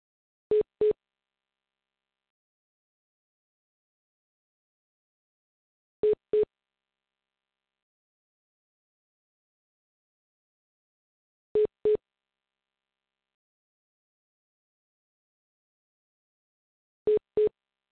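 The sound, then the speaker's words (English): A phone line beeps in quick double pulses, a mid-pitched electronic tone repeating four times at steady intervals of about five seconds, with silence between and no voices. “I'm here and it's still beeping.”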